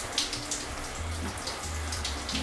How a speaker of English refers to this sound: And if you can hear, there's a shower.